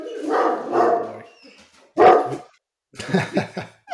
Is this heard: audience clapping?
no